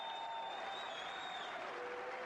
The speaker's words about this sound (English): Look at his fans all trying to clap his hand. Look at that, standing ovation, basically. Rey Mysterio hasn't left yet.